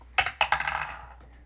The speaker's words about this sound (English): Do you want me to roll the die for the homework this week?